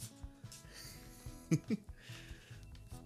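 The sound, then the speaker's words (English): A female Pomsky puppy (half Pomeranian, half Husky), running around a person's feet, snorts and wheezes, with two short, sharp snuffles in quick succession midway through a quiet stretch of faint breathy noise. No one speaks. “I got a puppy running around my feet.”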